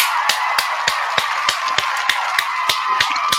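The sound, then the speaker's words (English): Steady, evenly spaced hand claps, roughly three per second, ring out over a continuous hazy background noise, like a short round of applause led by one clapper. The applause is for 9-year-old America's Got Talent contestant Victoria Brinker. “Let me give another round of applause to her.”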